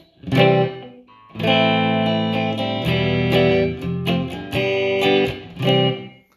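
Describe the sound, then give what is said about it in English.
Distorted electric guitar chords played through an early-reflection reverb effect, a loud burst followed by several sustained strummed chords with short breaks, each tail briefly smeared by the reverb. “Arena reverb. It's just big hall. Early reflection.”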